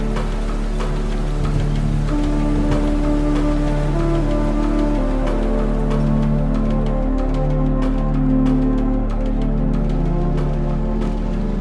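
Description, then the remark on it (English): Heavy rain pours steadily on a beach in the middle of a cloudless day, with scattered drops pattering through a dense wash, layered over a sustained low tonal drone throughout; no one speaks. “sat around a campfire on the beach cooking fish when rain began to pour in the middle of a cloudless day.”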